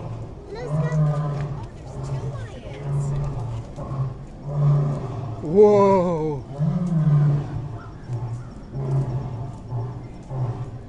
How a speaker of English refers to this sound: Whoa. The lion's making noises.